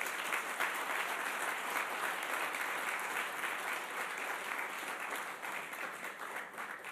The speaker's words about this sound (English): Glory to God. Yes, we can applaud.